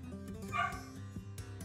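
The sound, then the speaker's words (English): A female dog barks several times in quick, uneven bursts, fairly soft, over a steady tonal background with no one talking. “That's our mascot, Remy. She's barking.”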